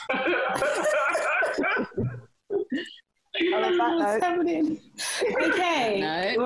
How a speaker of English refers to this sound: God, can I even cough? Am I allowed?